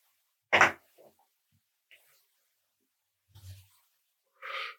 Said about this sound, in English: We don't do that butane shit. So. No. We're going to light it with a hemp wick.